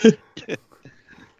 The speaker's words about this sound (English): Yeah, pardon me for the cough there. Sorry.